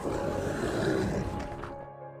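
A creature in a cemetery lets out a deep, loud, angry roar that rumbles for about two seconds, rough and growling with heavy low tones, then tapers off into a fading tail. No one speaks.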